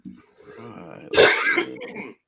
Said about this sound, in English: And forgive me for coughing because I still have a little bit of a cold.